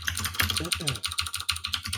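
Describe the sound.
Rapid, forceful typing on a computer keyboard while arguing against the TV show The Big Bang Theory, a dense stream of sharp key clicks throughout, with a faint voice briefly murmuring underneath.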